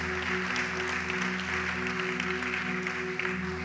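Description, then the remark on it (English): A church audience claps their hands in a steady, dense wash of applause that holds at an even level for the whole stretch, with a low constant hum beneath it, after the preacher invites them to clap. “Come on, if you receive that, why don't you clap your hands?”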